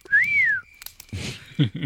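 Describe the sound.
A loud, clear catcall whistle: one bright note that swoops up and then glides back down, followed by short bursts of muffled, noisy sound.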